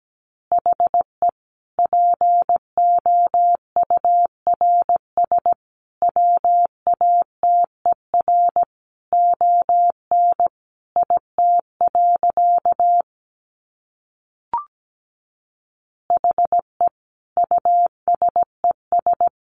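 Morse code at 17 words per minute: a single steady mid-pitched tone keyed into quick dots and dashes, with one long pause and a brief blip before the sending resumes.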